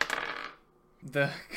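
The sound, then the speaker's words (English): A small purple die clatters onto a hard tabletop, a quick bright rattle that fades within half a second, followed by a short burst of voice. “I just wanted to know what dice it was.”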